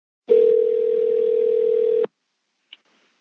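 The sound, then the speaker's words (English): A loud, steady telephone dial tone hums for nearly two seconds, cuts off, and is followed by a single short keypad beep as dialing starts. No voices. “I say aloud as I pick up the phone. They're sensitive to the struggles of their fellow man. I take a deep breath and dial.”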